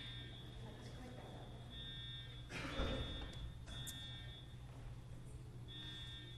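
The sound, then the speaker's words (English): A building alarm sounds in repeated long, high-pitched electronic tones, fairly faint and steady over a low background hum, with a brief louder rustle or clatter midway. “Can you all live with that for a minute? I'm quite sure it's a false alarm.”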